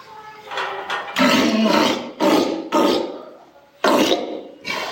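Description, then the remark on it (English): Deep, rough vocalizations from walruses performing their vocal behaviors on cue for their trainer, coming in loud bursts, several growling, roaring calls separated by short pauses, with broad raspy texture and strong low rumble. “she had them do some of her vocal behaviors for me so that y'all could hear them. So here are the walruses.”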